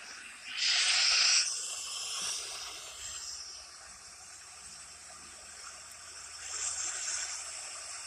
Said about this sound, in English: I brought the ocean to you.